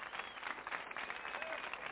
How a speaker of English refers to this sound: There's the applause.